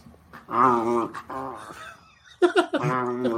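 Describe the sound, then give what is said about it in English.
Two small schnauzer dogs let out strained, warbling growls in a few loud bursts: a long drawn-out one, a shorter one, then a quick cluster of yelping snarls. “These are two little itty bitty schnauzers, and it's just an unnatural, unholy sound.”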